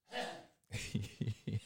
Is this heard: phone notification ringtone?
no